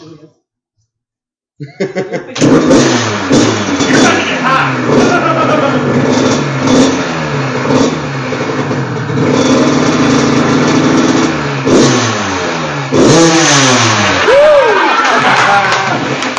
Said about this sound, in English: for an American dirt bike, this thing's killing the KTM and the Husqvarna. Yeah. Start it up.